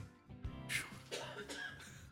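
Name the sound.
cough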